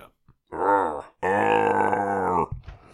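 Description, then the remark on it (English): A person vocally imitates Swamp Thing's yell as he throws a garbage can at a cop: a short guttural groan followed by a longer, loud, sustained roaring cry with a slightly falling pitch, then a brief breathy trail-off. “With a nice little yell.”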